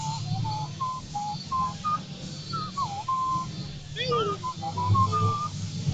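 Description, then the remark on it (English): Someone whistles a quick, bouncy video game melody, the notes hopping up and down with a few sliding pitches, over a steady low hum and faint background voices. “Okay, you don't have to whistle anymore.”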